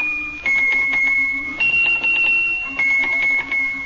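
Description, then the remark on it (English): Little Swiss hand bells, shaken one at a time by Squeaky the mouse, play the tune Little Liza Jane: clear, ringing tones stepping through different pitches, each note sustaining briefly before the next, fairly loud with no talking. “I know you're going to play your little Swiss bells for us today”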